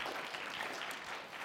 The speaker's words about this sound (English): I told first service, too, every time I raise my hand and say, do you like it? And everybody claps, you know, nobody puts their hand up because they don't want to be that person, right? So everybody claps.